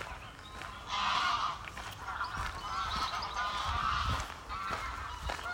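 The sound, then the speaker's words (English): A very large gathering of geese of various kinds honks continuously, many overlapping calls forming a dense, loud chorus with no pauses, while faint footsteps of someone walking past stay underneath. “I'm walking past a very large gathering of geese of various kinds, who are obviously being very vocal today.”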